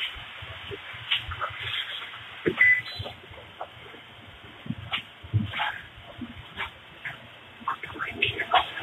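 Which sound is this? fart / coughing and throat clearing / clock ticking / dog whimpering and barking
dog whimpering and barking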